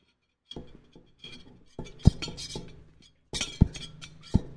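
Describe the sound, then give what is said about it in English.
Sharp metallic clinks and jingles from metal credit cards knocking together, several quick taps in irregular bursts, fairly loud with no talking. “Like, imagine being in a crowd anywhere with all of the jingling. All the tinkling.”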